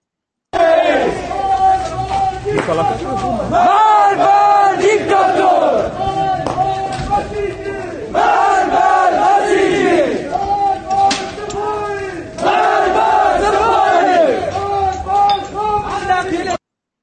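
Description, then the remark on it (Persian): A large crowd of protesters in Kamyaran chants loudly and continuously, voices rising and falling in repeated rhythmic phrases with brief dips between bursts, filling the whole stretch. “چی کار میکنن این جمعیت؟”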